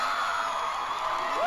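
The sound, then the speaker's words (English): A crowd in a recorded video cheers and whoops continuously at the announcement of Osama bin Laden's death, a dense wash of shouting voices with a few higher yells rising above the roar, steady and fairly loud throughout. “Listen to that crowd.”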